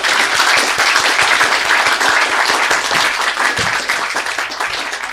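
Sustained crowd applause, dense and steady with many overlapping claps, holding at a fairly loud level for about five seconds and easing slightly toward the end.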